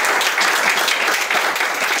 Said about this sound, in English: Please give him another hearty round of applause.